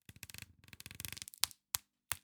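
Cellophane wrapper on a vinyl record being torn open: a rapid run of crisp crinkling ticks, then three sharp, loud crackles spaced apart, with no voices.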